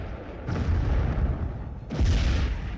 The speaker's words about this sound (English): Eric pulled open the door, not knowing that it was rigged to explode.